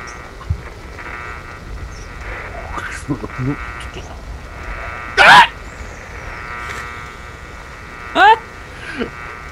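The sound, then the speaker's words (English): Two loud, piercing vocal shrieks, a Foley sound effect imitating an eerie sound, cut through a steady buzzing static hum, much of it muffled by a noise gate, with faint murmurs and rustles between them and a brief squeal near the end. “So all I just heard was, and then just a shriek.”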